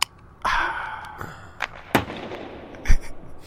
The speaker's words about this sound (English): Yeah, no, it's a beer opening, a hockey shot, and then a hockey buzzer. Ah. Makes no sense. No, not at all. Not at all. Not at all. But I'll do this noise every time that we do a new top 10 list.